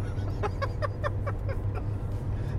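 Steady low engine rumble fills a moving car's interior throughout, with a quick run of about seven short, evenly spaced chirpy sounds over the first two seconds.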